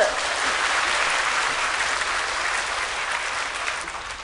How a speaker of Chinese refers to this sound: 奇怪，讲什么你们都拍手。怎么那么高兴啊？